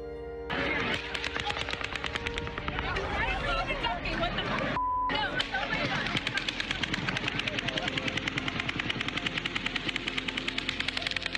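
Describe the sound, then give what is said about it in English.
Two guns fire automatic bursts at the same time, their loud, rapid cracks overlapping into a dense rattle. A brief pause comes midway before the firing resumes, with voices murmuring underneath. “I've got another little audio clip where you can obviously hear two separate guns firing.”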